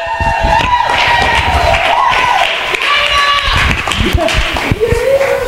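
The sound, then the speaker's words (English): A church audience at a Sunday night service applauds and cheers for the preacher being introduced, loud and steady, dense clapping mixed with shouts and whoops, with a few higher-pitched voices rising above the noise throughout. “Would you make some noise for our boy?”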